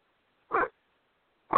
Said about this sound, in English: Is that a dog? Yeah, my dog's going nuts.